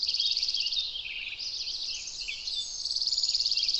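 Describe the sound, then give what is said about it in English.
Dark-eyed junco trills: rapid, high-pitched, evenly pulsed notes that run at the start and again at the end, with a busier, jumbled stretch of chirping between them. No voices are heard. “Those are dark-eyed juncos.”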